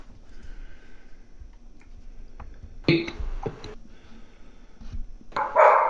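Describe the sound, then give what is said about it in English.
A dog barks excitedly in a few sharp, irregular bursts, the last one loudest, over a faint steady background hum with no one talking. “I have a dog going crazy.”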